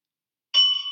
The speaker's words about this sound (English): did you just hit a bell? Do that again for me.